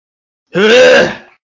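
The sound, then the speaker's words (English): A single loud sneeze with a voiced, drawn-out quality that lasts under a second and then trails off into silence, with no talking around it. “Bless you, darling.”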